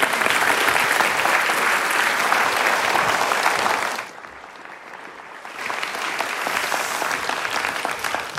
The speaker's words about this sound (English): With a big round of applause, would you please welcome Jane Caro.